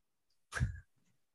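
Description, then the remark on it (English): A person briefly imitates a bear cub's growl: one short, rough, throaty burst, fairly loud, with no talking around it. “And no, it would be a bear growl”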